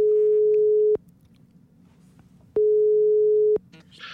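A phone ringback tone purrs twice, each steady one-second beep separated by a pause, sounding clear and fairly loud over faint line hiss as a call rings out.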